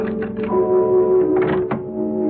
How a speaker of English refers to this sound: And then I heard it. A key was being inserted in the lock. And I could hear it turn.